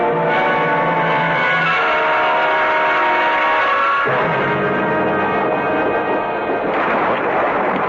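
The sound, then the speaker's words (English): Loud, sustained rumbling of storm thunder that rolls on without a break, shifting in tone partway through and again near the end, with no voices over it. “Storm, dear. No, not the storm.”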